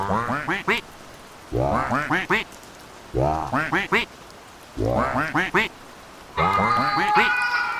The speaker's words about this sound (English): Here we have a song on duck, cat, dog, and goat, with duck taking the lead to start with.